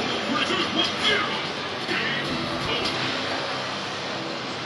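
A dense, steady wash of crowd murmur and arcade game noise at the Street Fighter 4 Championships, with two players on a Lindbergh arcade machine; loud and continuous throughout with no single voice standing out.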